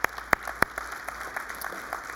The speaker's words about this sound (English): I'll tell them you clapped.